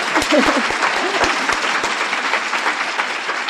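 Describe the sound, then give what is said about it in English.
An audience bursts into steady applause, clapping for the Lord, dense overlapping claps filling the whole stretch at an even loudness, with a few voices faintly murmuring underneath early on. “Let's clap for the Lord in that.”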